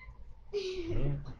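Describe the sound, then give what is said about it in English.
A single clear meow from a male cat, starting sharply and drawing out into a low, slightly falling cry that lasts about a second. “The way he meows, he just sounds so big bad.”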